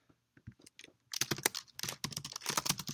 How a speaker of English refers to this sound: I'm just typing to some guy in the chat right now.